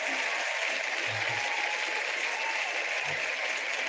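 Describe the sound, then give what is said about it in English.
A steady round of applause, dense, continuous clapping that holds at an even, fairly loud level for the whole stretch, with no voices rising above it. “I think that deserves an absolute round of applause.”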